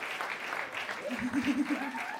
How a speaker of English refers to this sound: You guys, let's give him one more huge round of applause. That was just gorgeous.